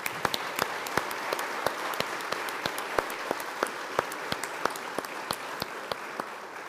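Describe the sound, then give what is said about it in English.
A crowd claps steadily in sustained applause, with many sharp individual claps standing out above a dense, even wash of hand-clapping throughout, welcoming candidates for confirmation at a church service. “It is our joy to welcome our brothers and sisters, and so let us give them a round of applause.”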